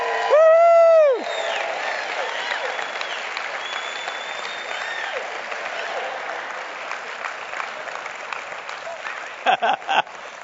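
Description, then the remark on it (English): A crowd in Stevens Point claps and cheers steadily throughout as they receive a satellite signal test, with a loud whistle near the start and a few sharp shouts toward the end rising above the dense applause. “They're clapping and cheering.”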